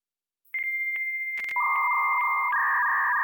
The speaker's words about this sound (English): This tone is emitted by the receiving modem. This tone disables echo suppression, because if echo suppression was enabled, it could corrupt data.